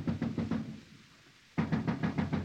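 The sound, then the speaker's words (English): Loud knocking by the king's watch on a door comes in two quick bursts of four or five firm raps each, separated by a brief pause, with no voices. “The king's watch. They're at the door.”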